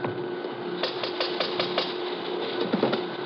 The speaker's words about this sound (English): You want to rap on the pay window? Yeah.